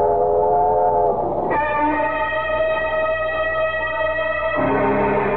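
A loud, sustained train whistle blows over the steady low rumble of a moving train, its chord shifting pitch twice as it sounds continuously with no talking.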